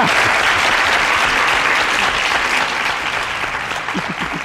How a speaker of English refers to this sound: That's actually only one person clapping. They just have a lot of hands.